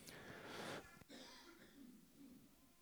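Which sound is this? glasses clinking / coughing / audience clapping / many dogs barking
coughing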